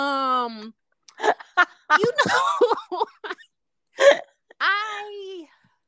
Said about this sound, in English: Clear my throat. before I talk about this.